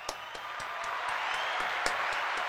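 A steady round of applause called for after a music track was played, a dense wash of many hands clapping at moderate volume with a few sharper, evenly spaced claps standing out. No one speaks.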